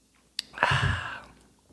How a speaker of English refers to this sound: take a sip of your beer.